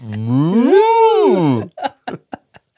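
A single long, loud cow moo swells upward in pitch and then falls away over about a second and a half, followed by a few short, quieter bursts of sound.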